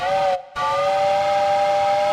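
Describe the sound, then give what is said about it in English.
A loud, sustained steam train whistle with rich harmonic tones, briefly cutting out for a split second near the start before blowing steadily on, alone with no talking. “It's time to take my high-speed train to New York.”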